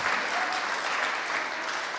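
A crowd applauds steadily, a dense, even wash of many hands clapping at a constant, fairly loud level for the whole stretch, with no voices standing out.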